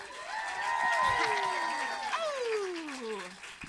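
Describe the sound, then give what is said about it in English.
At a live comedy show at the New York Comedy Festival, a crowd claps steadily while several voices whoop and cheer over it, one long cheer sliding downward in pitch before the applause tapers slightly. “So just a quick clap it up if you listened to the Bechdel cast before.”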